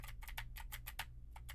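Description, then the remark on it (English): Rapid clicky keystrokes on a mechanical keyboard with Gateron blue switches, a quick irregular run of sharp clacks over a low steady hum, with a short pause near the end. “Now I am typing on a keyboard with Gatoron blue switches to see how much of my voice versus how much of the keyboard it picks up.”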